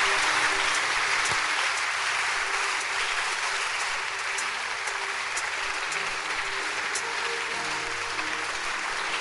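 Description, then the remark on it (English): A large audience applauds together with a hand clap of appreciation, celebrating the Lord, a dense, steady wash of hand clapping that stays loud and even for the whole stretch, with no speech over it. “So let's show our appreciation with a hand clap as we celebrate the Lord for bringing us here.”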